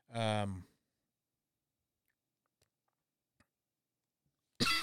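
A muffled cough, held back as the speaker tries to suppress it, opens, then near silence with a few faint clicks before a sharp, breathy cough bursts out at the very end.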